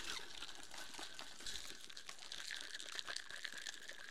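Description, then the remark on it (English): A pineapple margarita made with pineapple juice is shaken hard in a cocktail shaker, a steady, dense rattle of ice and sloshing liquid that continues for several seconds with no one speaking. “Put this off to the side and we're going to shake it up.”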